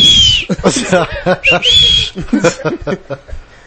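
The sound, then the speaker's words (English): A shrill whistled call, used to tell workers to go back to work after lunch, rings out in a few short, high bursts, mixed in with people talking and chuckling. “That's how I tell my workers to go back to work after lunch.”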